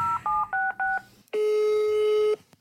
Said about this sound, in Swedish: Nu ringer vi henne.